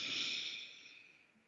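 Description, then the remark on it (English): A slow, deep inhale drawn in through the nose, airy with a soft hiss that fades gradually over about a second and a half, no talking. “So take another deep breath in through your nose.”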